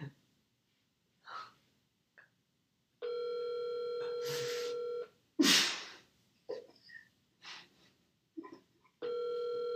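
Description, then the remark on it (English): A steady, loud telephone dial tone drones for about two seconds after a call ends, then returns near the end, with sharp gasps and breathy snorts in between. “Wait. They both hung up.”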